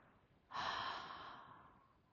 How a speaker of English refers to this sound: one deep breath in, filling your lungs. Hold and out. Breathing in through your nose. Hold your breath and release with your mouth open.